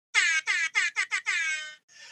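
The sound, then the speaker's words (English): An air horn sound effect blares in a quick run of short, loud, brassy blasts, ending on one longer held honk and a fainter trailing bit, with no talking. “All the air horns.”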